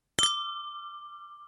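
Two glasses clink together once in a bright toast, followed by a clear ringing tone that slowly fades and wavers. No voices are present.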